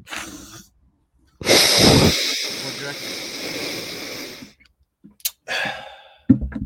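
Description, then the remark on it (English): Someone mimics breathing through a diving regulator: a short breath, then a long, loud, hissing rasp lasting about three seconds, followed by a few quick, sharp breaths. “I've got a regulator breathing through my mouth. Like that.”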